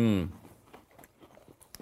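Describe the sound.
A short voiced sound opens, then crunchy chewing of a cinnamon-bun-flavoured cookie follows as a string of irregular crisp crackles and bites at moderate volume.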